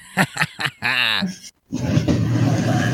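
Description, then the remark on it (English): A chair gives a loud, low, rough groan that drags on for over a second after a brief pause, preceded by a few short vocal-like bursts and a drawn-out creaky tone. “What the fuck was that noise? My chair.”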